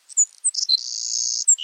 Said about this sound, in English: You'll have to listen closely to hear this summer songster. That persistent, buzzy song is the Savannah Sparrow.